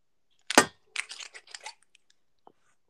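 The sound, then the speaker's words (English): A sharp, loud snap of a metal bottle cap breaking free from a glass bottle, followed by about a second of gritty crackling and scraping as the cap twists off, then a few faint clicks. “It's definitely a metal top.”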